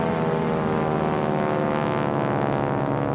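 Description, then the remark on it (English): A loud, steady drone of World War II–era propeller aircraft engines, a thick layered rumble that holds constant without fading in or out, with no voices present. “I believe that the ghosts of the planes, stay with me here, are still making their bombing runs, which we'll be getting into in the next episode.”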